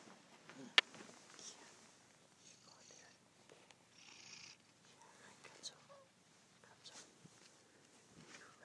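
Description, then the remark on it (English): A cat purrs softly and steadily in a hallway, the low rumbling texture running throughout, with quiet whispered voices in the background and a single sharp click near the start. “Hi, Gonzo. Kitties.”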